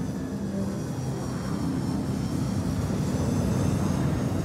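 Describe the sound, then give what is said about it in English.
A loud, steady roar of an airplane in flight, with a 350-mile-an-hour wind rushing hard through the cockpit as pressurized air escapes through a blown-out window, a dense continuous blast with a low engine drone underneath and no voices. “The rushing wind pins Captain Lancaster to the roof of the cockpit.”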